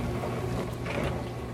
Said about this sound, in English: 70 is about how loud your dishwasher gets, though if you have an older one like me that we're listening to now, it's probably a bit higher.